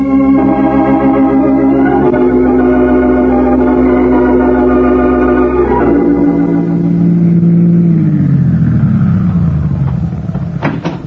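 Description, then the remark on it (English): A car engine hums loudly and steadily, then its pitch sinks as the vehicle slows and pulls to a stop at a gas station, with a couple of sharp clicks at the very end. “Answer, fill her up? Yep. How's the oil water?”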